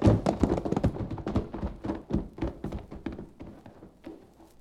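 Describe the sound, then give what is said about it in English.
Ridden horses hurry toward a small house, hooves pounding in a fast, rapid rhythm of dense thuds that stay steady throughout, then thin out and fade slightly toward the end, with no voices. “coming from what appeared to be a little house ahead of us, and which served to lend wings to our horses' pounding hooves.”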